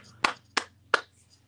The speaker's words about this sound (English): They're applauding you